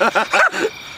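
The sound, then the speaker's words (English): A person imitates a chihuahua's barking: about four quick, high-pitched yaps in rapid succession, fairly loud, with no other talking. “Start barking like a chihuahua.”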